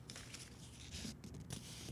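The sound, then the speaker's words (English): Soft, crinkly rustling of a slip of paper, drawn from a hat, being unfolded: a steady patter of small crackles and scrapes with a few sharper snaps near the end, quiet and with no voices. “I'm unfolding the paper.”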